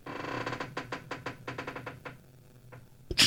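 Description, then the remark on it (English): Creaking like a boat's hull riding at anchor: a quick run of about a dozen rhythmic creaks and knocks, then a pause and one sharp, loud crack at the end. No voices. “It sounds like a boat that's at anchor It's just moving around.”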